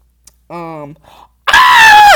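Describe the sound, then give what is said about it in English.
A person lets out a brief startled vocal sound, then a loud, sustained high-pitched scream of shock, lasting under a second before cutting off, while looking at TikTok. “Oh my god, I'm so sorry for yelling.”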